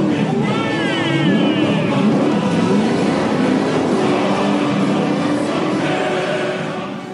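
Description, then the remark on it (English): Steady, loud traffic noise as cars move to the side of the road to let one car through, engines humming and revving, a busy murmur of voices mixed underneath, fading slightly at the end. “All those cars had to go to the side so that he could have his yes, right?”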